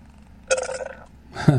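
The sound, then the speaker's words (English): A man burps after drinking beer: a loud, drawn-out belch rumbles for about half a second, then a second shorter burp follows, with no talking. “All right, so he's burping his beer.”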